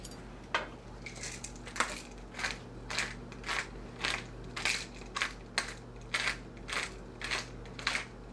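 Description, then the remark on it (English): A spoon stirs briskly in a bowl, mixing eggs, making a steady run of short scraping, clicking strokes about twice a second over a low, constant hum, with no one talking. “Mixing. I need one spoon.”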